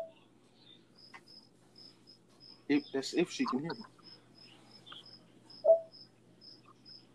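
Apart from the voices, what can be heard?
crickets chirping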